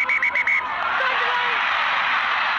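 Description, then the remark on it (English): A rugby stadium crowd cheers in a loud, sustained roar as Ireland captain Ciara Griffin scores her second try, opening with four quick, high-pitched honking bursts before the broad wash of cheering swells and holds steady. “You heard the crowd there. They were amazing, and goosebumps.”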